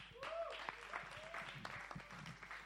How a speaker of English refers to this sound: So what we're going to do is, that was a nice clap, but there's a little thing that I like to do.